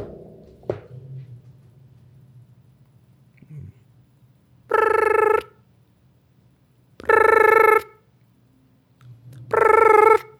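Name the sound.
phone call ringing unanswered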